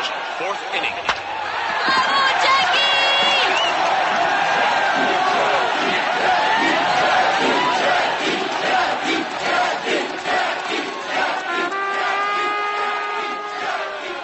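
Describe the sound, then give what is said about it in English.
A large stadium crowd of Montrealers at a baseball game cheers and roars continuously for Jackie Robinson, second baseman of the Royals, a dense wash of voices with scattered shouts and whistles rising above it, loud throughout with a few sharp bangs early on. “Record numbers of cheering Montrealers helped Jackie Robinson break baseball's color bar that year.”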